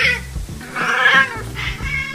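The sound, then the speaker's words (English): A cat on a kitchen counter meows loudly, three or so insistent, drawn-out cries in quick succession, with a faint low hum in the background. “You want to take the cat off the kitchen counter.”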